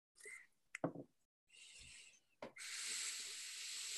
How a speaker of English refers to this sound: I'm getting a really lovely waft coming out of the can here, and as I pour it into the glass, same sort of thing.